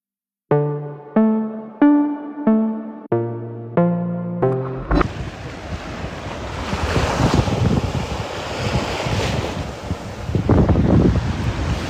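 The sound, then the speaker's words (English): After a short run of plucked musical notes, choppy waves of the Gulf wash steadily against the shore at Necoclí while strong wind buffets the microphone, a loud, continuous roar with surging swells. “The water is choppier, but the first thing you notice as you're walking alongside that shore of the Gulf”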